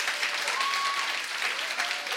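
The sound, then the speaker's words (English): An audience at a church service bursts into steady applause, clapping for Jesus: a dense wash of many hands clapping at an even loudness throughout, with a faint tonal whistle or feedback line drifting over it. “Clap for Jesus.”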